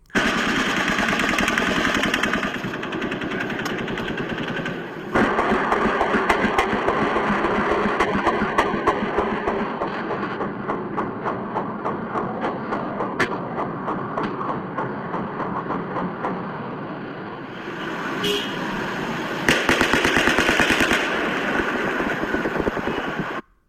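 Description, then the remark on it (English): Rapid bursts of overlapping automatic gunfire, shots coming from halfway up Mandalay Bay, dense and sustained for the whole stretch, with a slightly muffled, somewhat distant quality and brief pauses between volleys. “Now, what you heard there was overlapping gunfire.”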